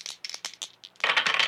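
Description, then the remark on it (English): Three dice rattle and clatter across a hard surface during a tabletop game: a quick series of sharp clicks, then a louder, denser burst of tumbling. Fairly loud, with no voices. “Three die. Three dice.”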